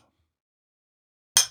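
A single bright clink of glasses touching in a toast, sharp, ringing briefly before fading after a moment of near silence.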